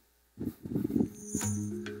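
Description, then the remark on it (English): A lion growls in a few rough, rumbling bursts that roll into a longer, steadier snarl, fairly loud, with no voices. “So, but then, the lion, check this out.”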